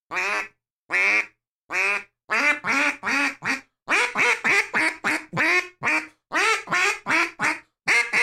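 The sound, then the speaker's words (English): A duck call, blown with a steady stream of soft, pressurized air from the front of the mouth, sounds a steady cadence of flat, nasal quacks, loud, around sixteen short notes running in quick groups separated by brief pauses, with no talking. “that flat quack teaches me to do”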